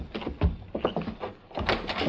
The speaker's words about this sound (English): Open the door. You go in first.